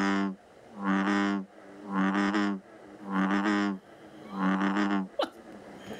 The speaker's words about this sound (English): Is it a sea creature? Kind of, sort of. It's an amphibian. It's an amphibian.